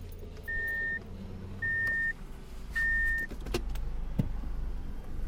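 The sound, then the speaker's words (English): A car engine rumbles low and steady as three evenly spaced warning beeps sound while it backs out of a driveway, followed by a couple of sharp clunks and the engine continuing on. “8:15, he saw Maggie's car back out of the driveway.”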